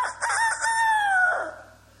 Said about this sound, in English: "What's that sound?" Immediately, "Yes, a rooster, thank you. You recognize that?" Immediately a rooster crowed.